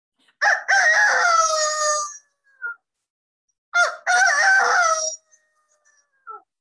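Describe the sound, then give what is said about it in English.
A person does two loud rooster-crow imitations, each a drawn-out warbling cock-a-doodle-doo with a harsh start, separated by a short pause; a brief trailing note ends each call. “Like, she loved the rooster call, the dog, the baby.”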